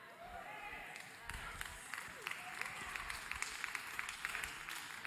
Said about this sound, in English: I know we can. I clap to that. I shout to that.